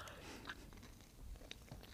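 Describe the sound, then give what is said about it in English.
Someone takes a first bite of a soft honey-butter hoe cake swimming in butter and honey, followed by wet, irregular chewing with small crunchy clicks, quiet with no talking. “I want to hear you chew it, and then I'll guess what it is based on the chewing sounds.”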